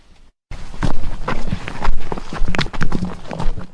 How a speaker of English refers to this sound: These are the footsteps of rangers in charge of the eastern region of the Kruger National Park, Chokwane. These men, sometimes comprising of women, are entrusted with the responsibility of protecting and preserving this park.